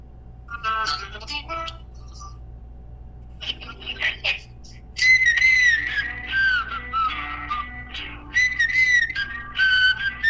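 A recorded song plays, with a bright whistled melody taking over halfway through, gliding and trilling loudly over steady backing instruments after a few shorter opening musical phrases.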